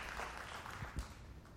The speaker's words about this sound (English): I'll tell you what, isn't it great to have Levites leading us into battle? Could we give them another round of applause? That was awesome.